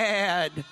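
A single loud, nasal sheep bleat lasting about half a second, steady, followed by a couple of faint, brief murmurs.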